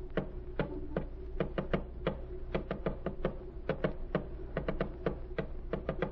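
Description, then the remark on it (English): Rapid, sharp tapping clicks in uneven bursts, like a message being tapped out in code, continuing steadily over a low background hum with no voices. “Tap it out.”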